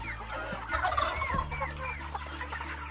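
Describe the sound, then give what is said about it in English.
A dense chorus of many chickens on a commercial chicken farm clucking and squawking at once, steady, with a low mechanical hum underneath like a large indoor poultry house. “and then picture a commercial chicken or duck farm.”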